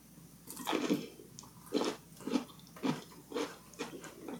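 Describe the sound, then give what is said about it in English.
Wet chewing of a crunchy peanut-butter-coated snack, with steady rhythmic bites and crunches repeating about every half second, loud, with no talking. “It makes the peanut butter taste less sweet, but more peanutty.”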